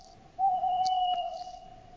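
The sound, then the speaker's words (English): An owl's hoot, drawn out into one long, steady, slightly whistly tone that starts abruptly and holds at an even, moderate loudness. A couple of faint clicks sound in the background, and nobody speaks. “Then we have this the owl.”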